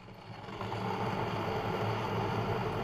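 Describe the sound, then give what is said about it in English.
A kettle heating up in a home kitchen in northeast England, with a loud, steady low rumble and broad hiss that swells slightly in the first half second, then holds constant with no voices. “Yeah, you can hear the kettle quite loud. It's like you can feel like the rumble is going to really...”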